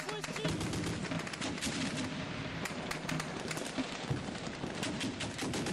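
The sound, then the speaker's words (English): A dense battle soundscape of continuous gunfire and heavy cannon booms, rapid overlapping shots crackling without pause, loud throughout, with faint shouting voices buried in the din. “The thunderous roar of the cannons outlined war's ugly truth.”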